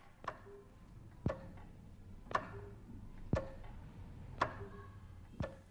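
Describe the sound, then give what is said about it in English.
Six short, sharp radio time-signal pips spaced evenly about a second apart, made by a clock mechanically interrupting a continuous note, marking the last seconds before the hour or half hour; each a crisp clock-like tick with a faint ringing tone against a quiet background. “The clock mechanically interrupts a continuous note, breaking it up into 6 pieces that usually represent the last seconds before the hour or the half hour.”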